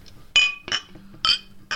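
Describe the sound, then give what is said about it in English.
Glasses clink together in a toast to Ladies' Day, four bright ringing taps at uneven intervals, fairly loud, each chime fading quickly with no voices over it. “So, shall we make a toast to Ladies' Day, everybody? To Ladies' Day, cheers.”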